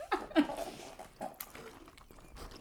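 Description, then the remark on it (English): Wet, crunchy chewing of a Crunchwrap Supreme right up against the microphone, with a few irregular smacking bursts and soft mouth noises between them. No one speaks. “I'm chewing into the mic.”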